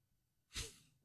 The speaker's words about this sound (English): Are you just going to yawn at the first 30 seconds of the podcast? I moved my mouth away from the mic.